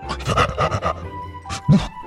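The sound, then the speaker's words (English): A dog named Cupcake pants in quick, breathy bursts, a rapid run of huffs followed by a couple of louder, throatier exhales with a faint whine, no talking. “and as they reached the door, Cupcake stood up and began running with them, but not before giving Professor Wildhide one last sloppy lick on the face. Good boy.”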